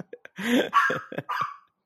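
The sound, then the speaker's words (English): A female dog barks several times in quick, uneven succession, fairly loud, a few short clipped yips leading into longer, strained barks, with no one talking. “Or the bark. I don't know what she's been so upset about.”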